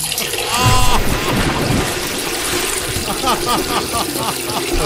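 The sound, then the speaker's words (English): A steady stream of liquid trickles and splashes for about five seconds, women urinating onto a man in a pit in a Golden Bachelor parody sketch, fairly loud, with faint high chirping sounds mixed in toward the end. “Oh my lord, he's in a pit and the losing women are urinating all over him.”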